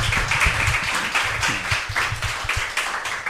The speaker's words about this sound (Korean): 아유, 저 위로의 아유. 박수 좀 부탁드립니다.